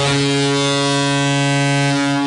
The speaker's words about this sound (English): I thought we took the air horn away from her.